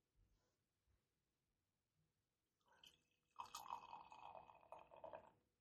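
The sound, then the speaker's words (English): A pink 5.6% ABV beer is poured into a glass, starting with a soft splash and swelling into a steady, fizzing gurgle of liquid that runs for a couple of seconds. “So, again, very excited about this one. 5.6% makes me even more excited because we're all about that low ABV life these days. All right, so let me pour you a little bit.”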